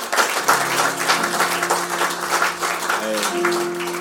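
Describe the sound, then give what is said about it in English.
Steady applause from a crowd at a worship gathering, given for a man who sang, dense clapping throughout, with a sustained keyboard or organ tone playing underneath and shifting pitch near the end. “What a round of applause for him.”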